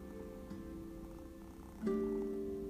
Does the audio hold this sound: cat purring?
yes